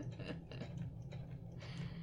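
A sewing machine, used for quilting by someone using one for the first time, runs slowly and quietly, a low steady motor hum broken by soft, uneven bursts of mechanical clatter roughly every half second, with no voices.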